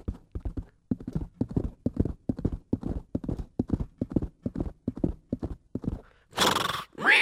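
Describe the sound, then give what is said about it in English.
A horse gallops with a steady, rapid drumming of hoofbeats that runs for several seconds, then ends with a loud, shrill whinny. No one speaks. “And so with a short tefillah, this Melamed Rab Yosef, he went out and he galloped as fast as he could. And he galloped.”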